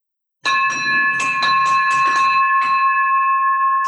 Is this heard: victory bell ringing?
yes